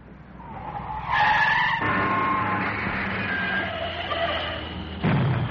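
A loud, sustained tire screech from a skidding car, with harsh squealing tones over engine rumble, followed by a second burst of noise near the end; no one speaks.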